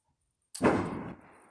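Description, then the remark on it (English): A single firework explodes outside with a sudden sharp crack, followed by a rumbling, fading echo that trails off over the next second. There is no talking, just quiet before the blast. “So, in light of all that, with all the fireworks going off, I just wanted to come on in and wish everyone well, safety, and peace and comfort for the night.”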